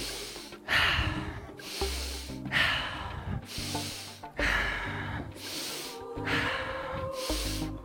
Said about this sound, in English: Back to the breath. Whatever you are, I would like to ask you to breathe in deeper, letting it go on exhale slower. Fully in.